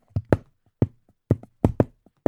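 Fingers tap the base of a microphone stand: about seven sharp, hollow knocks in an uneven rhythm, with a few softer taps between them and no talking.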